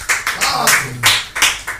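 An audience applauds loudly for God, with bright, dense clapping that surges in uneven waves, while voices call out underneath the clapping.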